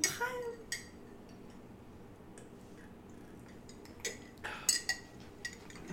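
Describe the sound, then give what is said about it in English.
Glasses clink together in a toast, a bright ringing chime at the start followed by scattered lighter taps and clicks, with a faint murmur in the background. “Let's all have a nice, healthy cheers, gulp.”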